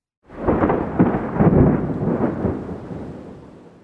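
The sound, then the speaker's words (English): A deep rumble of thunder following a lightning strike rolls in suddenly, swelling loud with a couple of heavy cracks before slowly fading away, with no voices present. “Thunder is a sound that comes right after a lightning bolt strikes.”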